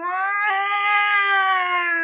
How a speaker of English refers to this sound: And just around then, you hear the familiar, well, to Jane, the familiar sound of a siren.